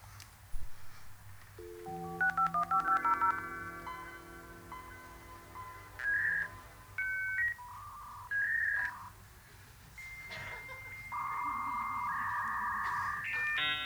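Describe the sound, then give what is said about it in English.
A dial-up modem dials out over a phone line to get on the internet, with a quick run of touch-tone beeps, then launches into its shrill handshake of whistles, warbling tones and hissing static, with no talking. “Can I borrow your phone line, see if he's on the internet?”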